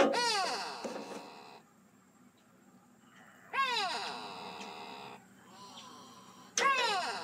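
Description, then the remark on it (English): A gray go-away bird's nasal, wailing call repeats three times in drawn-out bursts, each a descending harmonic cry like a complaining "go-away," separated by short quiet gaps, fairly loud. “This is the gray go-away bird.”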